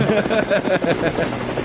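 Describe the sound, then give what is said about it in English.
A helicopter sound effect with steady, rapid rotor thumping, fairly loud, running continuously with no talking over it. “Helicopter sound effect? Does anybody else hear a helicopter?”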